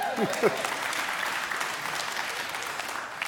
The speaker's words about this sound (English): He's translating in Rwanda. Could you clap for him?